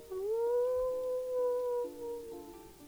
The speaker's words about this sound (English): When you hear an answering howl. It's just some wolves. Yeah, it's just... just some wolves.